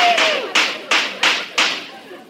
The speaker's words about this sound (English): Look out for these firecrackers.